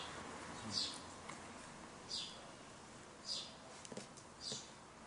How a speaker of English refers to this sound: You find it under trees. You can find the Dharma in that bird.